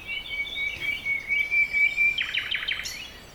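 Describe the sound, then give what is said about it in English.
Three robins sitting in a bush chirping at moderate volume: a thin, sustained high whistle gives way to a quick burst of rapid, repeated chirps near the end, with no voices. “Three robins were sitting in a bush.”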